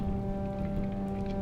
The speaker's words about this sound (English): The ruins of a burned-down bar creak in rain, dripping from the trees above.